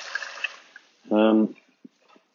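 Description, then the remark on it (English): Water is poured for a dog, pouring and trickling quietly, interrupted midway by a brief, loud, buzzing hum lasting under half a second, then a few faint clinks and drips. “Some water for my dog.”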